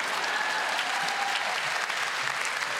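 An audience claps steadily, a dense wash of many hands with a bright, crackling texture that holds at an even level throughout, with no voices rising above it.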